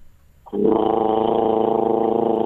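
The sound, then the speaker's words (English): A voice imitates a vibrating desk fan: after a short silence, a loud, steady, buzzing growl starts abruptly and holds for about two seconds with a fast, rattling flutter. “It's another desk fan, by the way.”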